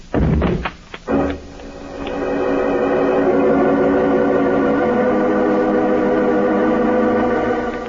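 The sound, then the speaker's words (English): A door cracks as several people force it, trying to break it down together: a quick burst of heavy, loud blows, then a long, strained creaking and groaning of wood that holds steady to the end. “Mr. Peters, the door is cracking.”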